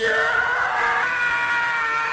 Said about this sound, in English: such as the Howie Long scream, in reference to Howie Long's character's death scene in the 1996 film Broken Arrow